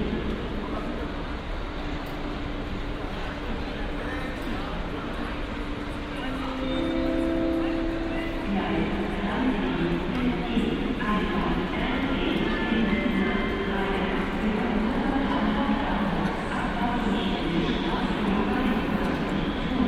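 Busy railway station ambience at Cologne Central Station: a steady wash of crowd murmur and footsteps, with a train's tonal hum and rumble rising in the middle and continuing, moderately loud.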